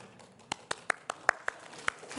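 A single person claps about eight times at a quick, steady pace, each clap a short, crisp snap over a soft, low background murmur.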